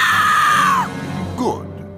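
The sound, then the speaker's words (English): A long, high-pitched scream, presented as the sound of plants dying in an experiment, holds steady for most of a second, then drops away, followed by a brief, shorter wailing cry that swoops downward against a low background hum. “The experiment that allows us to actually hear the plants dying, Scream.”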